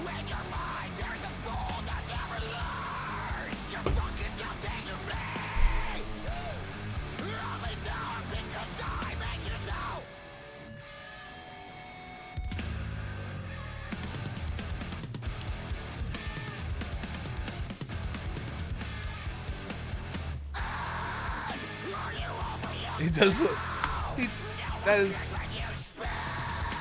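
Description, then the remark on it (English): Harsh, raw screamed vocals tear over a loud, dense band mix, with a brief near-silent break in the middle before the full-volume music and shouting return. “He does the best, like, just visceral scream.”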